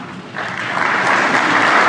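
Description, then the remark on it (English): A crowd applauds during the Pope's speech on immigration to lawmakers, the clapping swelling after a brief moment into a steady, dense roar of hands that stays loud to the end. “Wow, so big applause point there, relating it back to our children.”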